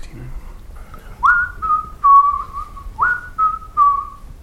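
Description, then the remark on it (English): Someone whistles the tune of the nursery rhyme "Three Blind Mice" as an answer in a quiz game, a clear, mid-pitched melody of two matching descending three-note phrases, fairly loud with only faint background noise. “3 blind mice. 3 blind mice, yes, well done. Come on, that's our first ever musical accompaniment to a game.”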